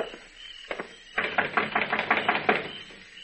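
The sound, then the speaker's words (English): Two quick knocks on the door of Mr. Silsby's shack on Cox's Lane, a short pause, then a longer run of about eight steady, firm raps in a fast even rhythm before it goes quiet. “Knock on the door.”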